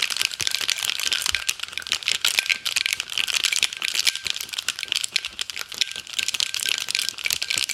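A cocktail shaker holding only a few ice cubes is shaken hard in a short shake to mix a red drink for a Collins glass, a steady, continuous rattling of clattering ice that keeps up for several seconds with no talking.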